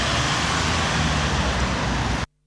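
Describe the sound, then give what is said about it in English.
Steady outdoor traffic rumble of cars moving around a car park in the morning, with a low engine drone under a broad wash of road noise, fairly loud and continuous until it cuts off abruptly. “You're coming into the car park this morning, sir.”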